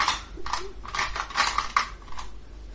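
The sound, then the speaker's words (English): A small four-sided die (d4) clatters across a hard tabletop, a quick run of sharp clicks and taps that bounce irregularly before settling, with no voices over it. “For absolutely no reason, can you roll me a d4?”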